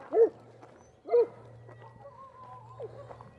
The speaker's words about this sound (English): oh, here come some dogs. You might hear some barking here, or they'll just be friendly. You never know, right?